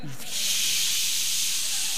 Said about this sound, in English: Back in the day, I remember, you know, my dad used to stay up until the television went to the fuzz. How many remember that?